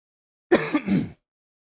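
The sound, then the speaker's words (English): A single sneeze, a short breathy burst in two quick parts lasting well under a second, loud against otherwise silent surroundings with no talking. “I sneezed.”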